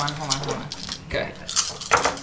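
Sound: dice rolling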